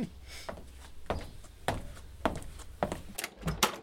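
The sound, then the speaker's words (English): Around seven dull, evenly spaced knocks on a door at a slow, steady pace, moderately loud, with no voices. “That'll be the door.”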